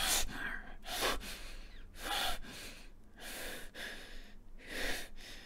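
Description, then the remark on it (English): A voice imitates a man's heavy panting, with about six loud, rasping breaths in and out in a steady rhythm, with no talking. “His breathing slowly calms.”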